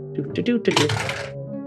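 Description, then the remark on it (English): Two ten-sided dice clatter across a hard surface in a quick burst of bright, rattling clicks lasting about half a second, while a voice talks softly underneath. “All right, 2d10 right here. These are my dice.”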